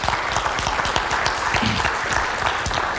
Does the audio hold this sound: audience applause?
yes